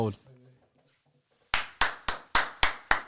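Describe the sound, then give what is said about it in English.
A voice briefly at the start, a short pause, then one person clapping their hands in applause, about seven loud, evenly spaced claps in a steady rhythm. “Why are you applauding this?”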